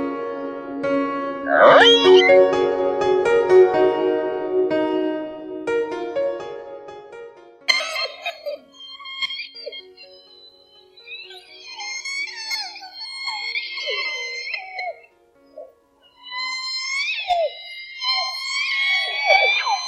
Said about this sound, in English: It's election time in Canada, so we wanted to let the endangered southern resident orcas share their own thoughts on Justin Trudeau and Canada's new pipeline.